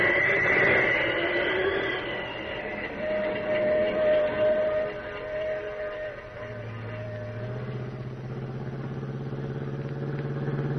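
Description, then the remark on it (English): A passenger train, the Pacific Flyer, rolls along the rails about a mile beyond Carson City with a loud, steady rumble and clatter, while long tonal whines drift over the noise and shift lower near the end. No one speaks. “Pacific Flyer, all right. The only train they could be on.”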